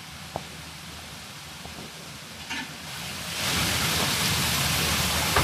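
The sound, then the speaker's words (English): Millions of litres of spring water rush steadily through a Roman overflow drain, a dense hissing roar with a low rumble that swells louder partway through and then holds. No one speaks. “all the water that comes out of the spring is going through a Roman drain, a Roman overflow drain”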